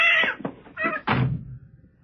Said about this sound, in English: Oh, that fool cat. Let me get him out of here. Now, come on, Jerry. Outside.